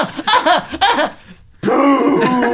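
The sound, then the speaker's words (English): A voice imitates someone sniffing hot pepper flakes, like the Looney Tunes Yosemite Sam character: two short vocal bursts, a brief pause, then a longer, louder, breathy sniffing sound held to the end. “He goes, sniffing peppers.”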